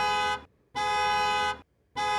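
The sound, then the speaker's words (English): A car horn honks outside in three loud, sustained blasts with short gaps between them, the middle one longest, with no voices. “We hear repeated honking outside.”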